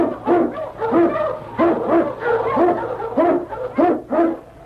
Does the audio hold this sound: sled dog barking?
yes